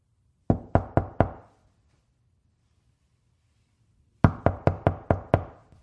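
Someone raps on a door four times in quick succession, pauses for a few seconds, then knocks again with a longer run of six sharp knocks.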